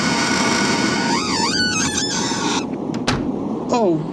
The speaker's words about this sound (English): The doors of the cabinet have slammed shut. Hey? The magpie hut door must have been half ajar and the wind caught the door of the cabinet.